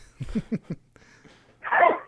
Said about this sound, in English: Wait 1 second, I'm about to sneeze.